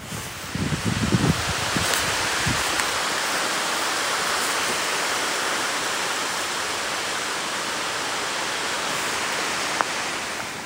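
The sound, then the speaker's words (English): A steady, dense hiss of rain just starting to fall outdoors under a deep grey sky, holding even and unbroken from start to finish, with a few brief low thumps near the beginning and no voices. “Oh, can you hear? It's just starting to rain.”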